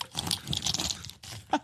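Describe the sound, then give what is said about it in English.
Dry crunching of a stiff sock covered in dried semen, a dense crackly rustle that keeps up for about a second, pauses briefly, then ends with one sharper crunch. “Yeah, it's the this sound of a sock crunchy.”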